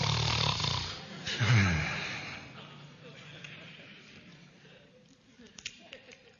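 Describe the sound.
A man's voice imitates snoring: a loud, rasping snore with a rattling low snort, fading into quieter breathy noise with a few faint clicks at the end.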